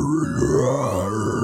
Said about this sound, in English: That's my Apple Music. It's Bluetooth streaming into your car for some reason. That's my death metal playlist.